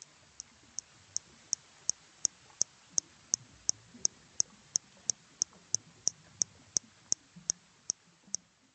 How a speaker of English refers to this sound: This is what they sound like. And this is what Hector's dolphins sound like in slow motion.